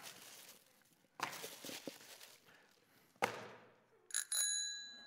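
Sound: bicycle bell ringing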